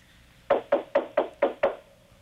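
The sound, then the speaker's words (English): Six quick, evenly spaced knocks on a trailer door at a trailer park in Lakeland, loud, each a sharp hollow thud with a slight ring, followed by quiet. “Well, knock on the door.”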